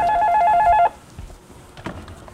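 A loud electronic office telephone ring with a rapid warbling trill sounds for under a second, then cuts off, leaving faint background noise and a couple of soft bumps.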